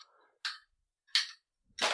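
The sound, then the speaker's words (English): Three sharp, explosive pops from a video game burst out at steady intervals, each a short noisy crackle that fades quickly, with near silence between them and no talking. “Oh, that's pretty cool, like, explosion animation.”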